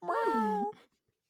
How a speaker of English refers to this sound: find me a good meow noise